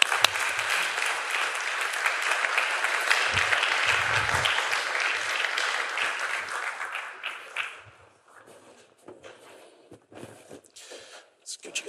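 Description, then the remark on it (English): A crowd applauds as members of a family are invited forward for a panel, with steady, loud clapping for about eight seconds, then it thins out into scattered claps and rustling movement, with some faint voices underneath. “So with that, I'd ask you please to give a warm round of applause as I invite up some of the”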